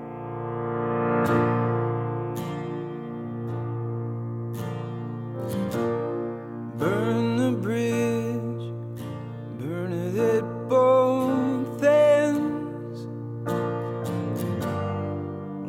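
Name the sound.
slow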